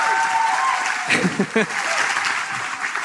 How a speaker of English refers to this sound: So I wanted to, most of all, just thank you and get a round of applause for your work on the beatdown.